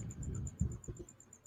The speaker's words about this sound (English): It's something like crickets or something. Yeah. It's like crickets in the background. It's probably you because you're outside. Like, he's going crazy. Oh, now. It stopped.